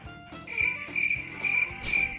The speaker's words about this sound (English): Crickets.